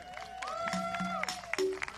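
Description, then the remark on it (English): An audience claps in scattered, uneven bursts in praise to God, with sustained tonal notes and gliding pitches running underneath at moderate loudness. “That was, can we clap again?”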